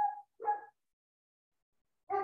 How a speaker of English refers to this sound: Can you hear my dog? Yes.